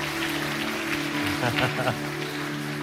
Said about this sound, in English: She wants to be baptized today, as she says she's ready to formally and publicly commit herself to Christ. So come on, let's give her a big City Church applause. So good.